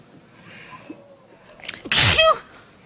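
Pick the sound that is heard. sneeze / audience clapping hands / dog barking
sneeze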